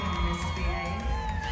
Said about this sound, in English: We went inside. The lights went down. A pop song started blaring over the speakers. And the women in the room started to scream.